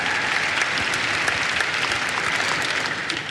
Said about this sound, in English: Let's give a round of applause to everyone on that.